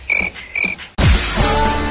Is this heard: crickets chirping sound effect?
yes